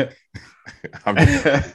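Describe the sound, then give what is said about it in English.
A woman, the speaker's wife, coughs in the background in a short series of rough, breathy bursts, the last few running together into a longer, raspy fit, heard at moderate volume slightly off-mic. “Wifey coughing in the background, but sorry.”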